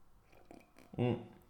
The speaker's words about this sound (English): And I'm having a little sip of coffee here.